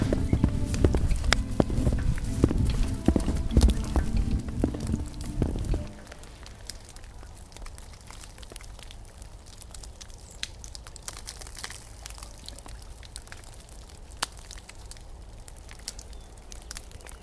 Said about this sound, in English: I think it almost sounds like rain. I've just entered the beginnings of the forest here, and I'm getting attacked from above. Small and large pieces of snow, wet snow, are dropping down and smacking the ground and smacking me.